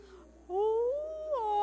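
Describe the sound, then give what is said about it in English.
A person does a drawn-out, moaning whale imitation, one long loud tone whose pitch slowly bends upward and then jumps higher near the end. “Or can we talk whale? Can we do whale voice?”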